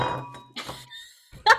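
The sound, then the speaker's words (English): A few bright clinks of a wine glass, each with a short ringing tone that fades, the last knock sharper and louder than the others. “That was my wine glass, everybody.”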